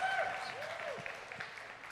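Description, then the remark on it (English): An audience applauds a guest being introduced, in a dense, steady burst of many hands clapping at once, fairly loud throughout, with a few faint voices and tonal cries rising over the clatter. “He loves applause for himself.”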